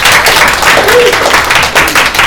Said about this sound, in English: Let's clap again,